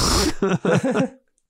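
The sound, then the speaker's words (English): A voice imitates a Wilhelm scream: a harsh, raspy burst followed by three or four short, strained vocal cries in quick succession, ending abruptly after about a second. “Can you do a Wilhelm scream?”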